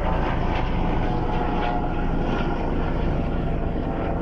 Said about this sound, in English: Is that a Coast Guard chopper? That was weird. Yeah. I think it was.